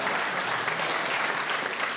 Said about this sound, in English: And I think the fact that the audience laughed and even applauded those words illustrates your point.